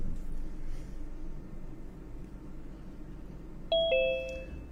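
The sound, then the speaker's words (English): A two-tone doorbell chime rings out clearly near the end, a bright ding followed by a lower dong that lingers, over a steady low background rumble with no talking. “There's our doorbell.”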